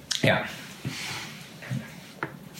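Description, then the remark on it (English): Quiet sips of water from a huge jug, with a few short wet slurps and gulps spread over a couple of seconds, plus faint breathy noises between them. “As I take a sip of my water. Fucking huge ass jug.”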